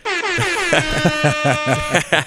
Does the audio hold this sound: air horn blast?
yes